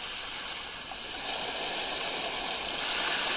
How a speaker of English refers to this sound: An occasional little wave rippling into shore.